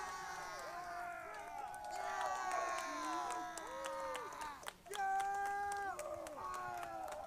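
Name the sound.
group of people cheering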